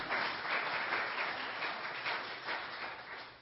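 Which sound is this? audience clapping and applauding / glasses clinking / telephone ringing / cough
audience clapping and applauding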